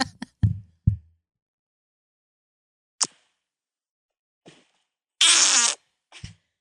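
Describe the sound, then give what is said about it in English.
A loud, brassy fart with a buzzy, trumpet-like tone lasts about half a second, preceded by several short low thumps and pops and a few scattered quick squeaks, with no talking. “That's got a trumpet vibe for sure.”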